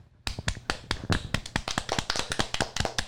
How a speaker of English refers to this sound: Yeah, I do have to say, before we do get carried away, do we have an applause button? I don't think we do anymore.